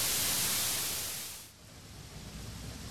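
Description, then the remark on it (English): Heavy rain pours in a dense, steady hiss with no voices. About halfway through it shifts to a softer, grainier wash with faint low rumble underneath. “It's called Heavy Rain. Kind of sounds like an alley.”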